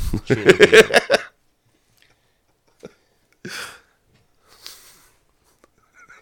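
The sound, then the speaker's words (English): A single sharp, fairly loud sneeze bursts out a few seconds after a short spell of voiced sound, followed by a softer breathy snort and quiet pauses. “God bless you, sir.”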